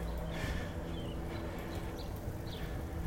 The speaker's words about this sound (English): in Central Park. I hope you've been able to hear the birds. I like hearing birds.